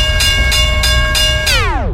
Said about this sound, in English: Railroad.